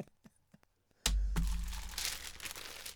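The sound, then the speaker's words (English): A few faint ticks, then a sudden loud burst of a copy of the Metro, a free newspaper, being crumpled, its crackling, rustling noise continuing steadily for a couple of seconds with no talking. “It was bloody the Metro.”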